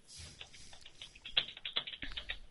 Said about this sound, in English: Stop typing. Come on. At least mute the microphone or something. I can't have this.